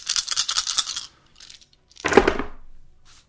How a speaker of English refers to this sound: Oops. Banging cups. Let's see here. I'm knocking cups out of the way. I'm knocking dice out of the way.